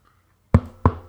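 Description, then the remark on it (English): Three firm knocks on a door, evenly spaced, each a solid thud with a short resonant ring, after a brief quiet moment with no voices; a person acting out a delivery driver knocking. “So I've knocked on the door there.”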